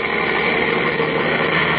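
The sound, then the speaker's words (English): A delivery truck that has just arrived idles with a steady, unbroken rumble, a constant low drone with a rough mechanical texture and no voices. “There's a truck just arrived with a delivery.”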